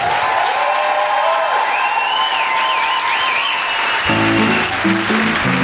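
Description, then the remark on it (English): A crowd applauds loudly and steadily to thank guest Emma Holten, with cheering and whistles rising over the clapping; near the end a bright musical melody comes in underneath. “Please give a round of applause and thank you to Emma Holten for coming.”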